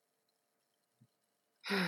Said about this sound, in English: And you're probably hearing Iggy snore in the background. I apologize, but I'm not taking it out.